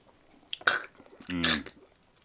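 Someone takes a quick sip of beer: a short airy slurp, then a throaty, voiced gulp or exhale, with a brief pause between them and no talking.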